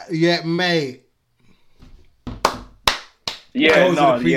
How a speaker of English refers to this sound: Round of applause.